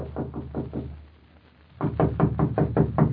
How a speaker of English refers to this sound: Knock on the door, please